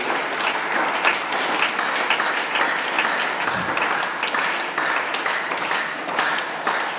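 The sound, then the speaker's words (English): Sustained applause from a large audience, dense and steady for several seconds with no speech over it, the clapping blending into a continuous wash of sound. “The way you are not clapping, I'm not sure you are in the house of God.”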